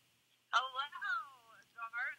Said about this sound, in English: Is she calling you? Because I'm getting a phone call from Britt Baker. Just hold it up to the the mic as close as you can. Yeah, that's possible. Put it on speaker so everybody Hello? Can hear.